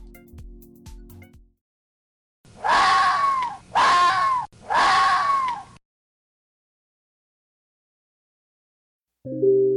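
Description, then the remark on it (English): A fox screams three times in quick succession, each cry loud, harsh and drawn out, with nothing else around, framed by faint low tones before and after. “The most startling is the scream.”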